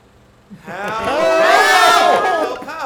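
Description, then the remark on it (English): A crowd of voices bursts into loud, high-pitched screaming after a brief quiet start, many overlapping cries wavering in pitch and holding steady until the end. “I want to hear more summarizing, less screaming, and then more screaming.”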